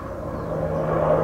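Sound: helicopter flying overhead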